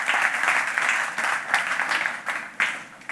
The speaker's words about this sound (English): Jesus paid it all. Amen. Yeah, you can clap.